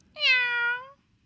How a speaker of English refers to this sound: Cute. A cat one. It would have worked if you held the thing up to the mic, but it's so far.